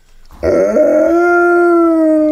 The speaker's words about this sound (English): It's the Aztec death whistle, I'm telling you. That is a real thing.